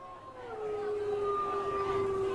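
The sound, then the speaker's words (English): People howl like wolves at a football game in Sun Prairie, a drawn-out, rising wail held steady for a couple of seconds over a noisy, crowded background, imitating a wolf pack's cry. “You hear the wolves?”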